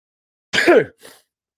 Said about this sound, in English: I think I unmuted myself as I sneezed then. So apologies if you heard that. it's one of those where I'm like clicking the mute button and then managed to sneeze down the microphone.